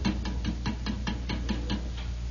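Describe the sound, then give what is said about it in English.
A steady, even series of about ten sharp knocks on a garage, evenly spaced and quick, with no voices and a low hum underneath. “It would look, and we'd knock again, you know, like this.”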